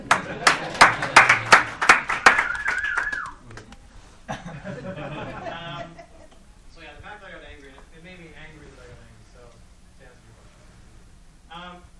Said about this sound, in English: Thanks for clapping.